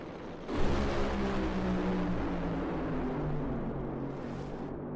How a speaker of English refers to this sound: Just want to make sure we hear it, because I liked how they sounded this weekend. So we're going to listen to this run. Final two funny cars will set the ladder to get ready to go racing tomorrow. Can J.R. take it away?